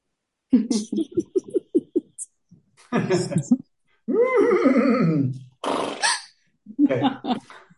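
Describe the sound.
A person's voice imitates a horse, giving a long, wavering whinny with a breathy snort at the end, preceded by choppy vocal sounds, fairly loud.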